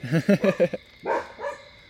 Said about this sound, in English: We just have a little dog action happening.